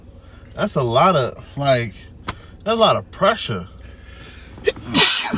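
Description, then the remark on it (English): A man talks briefly, then a single sharp sneeze bursts out at the very end, loud and breathy with a hissing edge. “bless you.”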